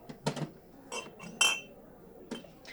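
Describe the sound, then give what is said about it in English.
A ceramic GL Dansk Mjord bottle clinks and knocks as it is handled, with several short, bright taps at irregular intervals, the sharpest near the middle, over quiet background noise. “It's a really gorgeous ceramic.”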